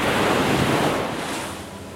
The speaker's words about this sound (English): A dark wave crashed onto the roof under the survivor's feet,